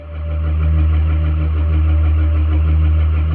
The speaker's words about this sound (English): Drone motors whine far above, the noise vibrating into my bones. I count three from the sound, maybe four.